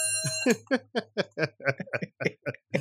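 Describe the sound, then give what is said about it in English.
A small bell rings once, its bright tone hanging briefly before fading, followed by a run of short, rhythmic bursts of laughter. “Yeah, but so you should hit the bell every time my gringo privilege flares up.”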